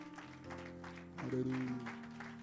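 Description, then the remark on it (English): An audience claps their hands unto the Lord in a steady, lively rhythm at a church service, the claps blending with sustained organ or keyboard tones and a murmur of voices. “Can we clap our hands unto the Lord one more time?”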